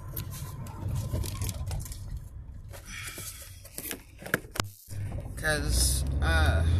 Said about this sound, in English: Anywho, I hope y'all can hear me with all this wind going on. It's pretty muggy and hot this morning here in Kentucky,